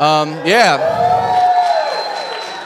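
An audience claps and cheers, a dense wash of applause with a few whoops at the start, holding steady for a couple of seconds before slowly thinning out.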